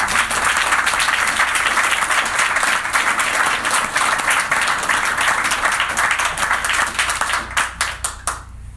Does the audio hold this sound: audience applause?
yes